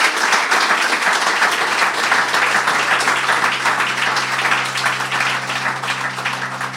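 Loud, sustained audience applause, a dense wash of many hands clapping that holds steady for several seconds with no voices on top, easing only slightly toward the end.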